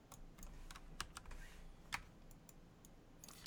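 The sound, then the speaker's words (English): Computer keyboard arrow keys being pressed while trying to scroll, in a quick, irregular series of crisp clicks, fairly quiet, with a couple of sharper, louder presses standing out. No one speaks. “Yeah, now the arrow keys won't do.”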